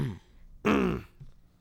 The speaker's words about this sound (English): you want to clear your throat? No. Okay. I already did.